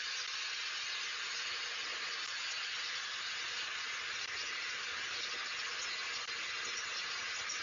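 A power saw cuts through a car's catalytic converter with a steady, harsh, high-pitched metallic whine and hiss that runs unbroken for several seconds. No one speaks.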